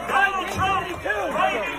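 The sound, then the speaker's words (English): A crowd boos a man who is speaking, a dense wash of overlapping voices rising and falling in pitch together, loud and sustained throughout with no clear words. “Doesn't matter how much they boo you, you are heroes.”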